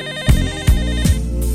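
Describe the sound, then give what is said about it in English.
A telephone rings with a bright, repeating electronic tone over a steady musical backing, with low thumping beats marking a regular rhythm. No one speaks. “But I think I'm gonna let this phone ring just one last time.”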